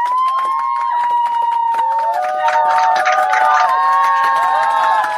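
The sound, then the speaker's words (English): A large crowd cheers loudly and continuously, many voices whooping and shouting together with scattered clapping underneath, a steady roar filling the whole stretch without a break, played from a soundboard. “Is that the applause from Tiger Woods?”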